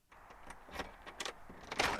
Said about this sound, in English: I knocked on the door.